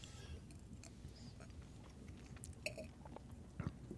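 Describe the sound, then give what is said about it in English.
Quiet mouth sounds of someone taking a small sip of bourbon, with soft wet slurps and a couple of faint clicks near the end. No one talks. “All right. Let's have a little sip.”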